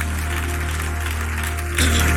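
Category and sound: crowd, audience clapping hands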